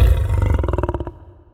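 A single deep, loud lion roar, opening with a rough rumbling blast and breaking into pulsing throaty grunts that fade out after about a second.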